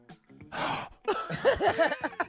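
A man's sharp, breathy gasp of surprise rushes in for about half a second, fairly loud, then gives way to a burst of excited voiced sounds.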